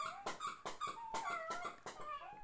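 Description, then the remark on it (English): A female dog whimpers and whines because she wants to be played with and have her toy thrown, in a rapid series of high, wavering cries, with short vocal bursts rising and falling in pitch, fairly loud and with no people talking. “She's crying, everyone, because she wants us to play with her and throw her toy.”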